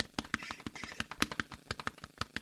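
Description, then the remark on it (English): A quick drum rhythm tapped out on a chest: a fast run of dull, thumping pats in a driving, syncopated pattern, fairly quiet, with no voices. “Well, I could play it probably on my chest here, so it's like.”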